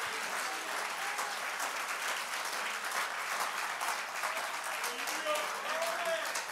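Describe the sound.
A church audience claps hands unto the Lord in dense, steady applause that fills the whole clip at an even, loud level, with faint voices calling out underneath near the end.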